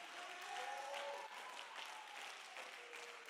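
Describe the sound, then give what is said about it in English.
An audience claps their hands together in a dense, steady wash of applause that holds at an even level throughout, with faint crowd murmur and a sustained tone running underneath. “Oh, go ahead, clap your hands a little bit.”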